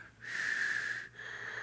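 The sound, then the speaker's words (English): A voice imitates the heavy, wheezy breathing of sleeping kids: one long, airy inhale with a whistling tone, then a softer exhale. It is moderately loud, with no talking. “You listen for the heavy breathing.”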